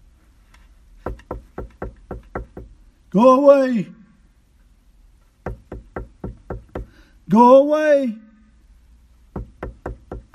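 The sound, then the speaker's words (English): Sharp, repeated knocking on a door in quick bursts of about six raps each, interrupted twice by a voice loudly calling out, then the knocking starts up again. “What's importunity? Constantly knocking.”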